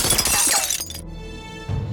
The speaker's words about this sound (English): moments before a bullet smashed through the windshield.